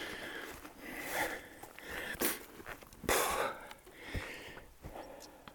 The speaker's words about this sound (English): I'm a bit out of breath. I just climbed over a ladder stile, so if you can hear me breathing, that's what it's about. I did come up the hill at a blistering pace, and I'm kind of catching my breath now.